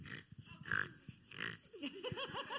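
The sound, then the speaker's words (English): A group of boys loudly imitate pigs, overlapping grunting oinks and snorts in a rough chorus, ending with higher-pitched wavering squeals. “Let's hear some pigs. You have to be loud. Oink, oink, oink, oink.”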